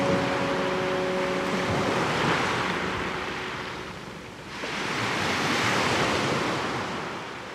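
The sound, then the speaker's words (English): Ocean waves roll in and break on the shore in two broad surges, a loud continuous hiss of surf with some wind noise, no voices present. “Like, the ocean is my prayer closet, I guess. It's just where I go to listen and to be heard.”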